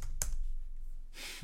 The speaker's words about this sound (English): Oh my god, I'm very hungover. You can tell by the rate at which I'm typing like my mam.